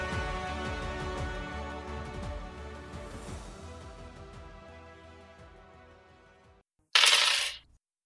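After several seconds of ringing, sustained tones fade out and a brief silence passes, a door closes with one loud, sharp bang that ends abruptly.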